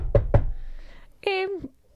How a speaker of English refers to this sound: A few minutes later, Little Red Riding Hood arrived at her grandmother's house. She knocked at the door. I knocked at the door.